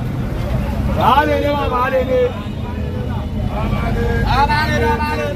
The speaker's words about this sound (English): At this bus park, yellow Danfo buses haggle for passengers going towards their routes. And that's the story of Lagos, with over 20 million people competing for resources and opportunities.